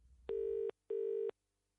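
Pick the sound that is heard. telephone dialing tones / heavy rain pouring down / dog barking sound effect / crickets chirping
telephone dialing tones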